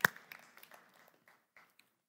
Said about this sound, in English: Come on, we can clap.